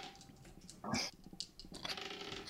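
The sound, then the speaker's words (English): Dice rolled for a stamina roll against a difficulty of 7 in a tabletop game tumble and clatter across a hard surface, a loud burst of rattling clicks followed by a scattered run of smaller taps as they settle, with no talking. “That dice fell.”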